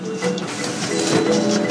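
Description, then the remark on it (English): A black and white laser printer runs steadily, printing book pages on standard letter or A4 size paper, its mechanical whir and hum holding an even level with faint higher whines on top and no voices. “Once in production, a four-color book cover is produced from tabloid or A3 cover stock, while a black and white laser printer prints the book's pages on standard letter or A4 size paper.”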